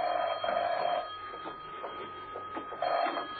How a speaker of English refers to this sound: When he entered his apartment, the phone was ringing.